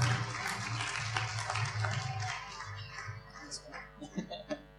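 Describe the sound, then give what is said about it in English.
A crowd applauds steadily for a few seconds in thanks for the people who gave an update, a dense wash of clapping that thins out toward the end, with a low hum underneath and a voice briefly emerging as it fades. “Let's give these guys a clap and just say thank you to the Lord for all they're doing.”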